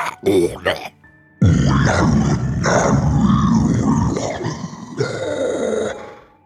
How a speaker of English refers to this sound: You hear the guttural sound of arcane spellcasting in deep speech.